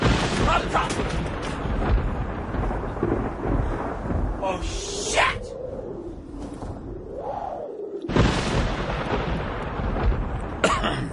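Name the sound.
thunder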